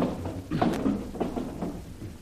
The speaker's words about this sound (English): Now, look. I want this room to look as if a cyclone had hit it. Pull out the drawers in that dresser there. There, that's it.